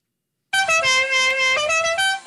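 A loud car horn sounds alone as a friendly tap to greet a friend, holding a bright tone for about two seconds and stepping through a few pitch changes, like a cheerful musical toot rather than a blaring honk.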